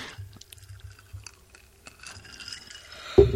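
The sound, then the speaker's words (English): Clinking ice and liquid being poured into a glass, with small scattered taps and trickles, ending in a louder splash and clatter near the end. No one speaks. “That his glass of with ice and whatever.”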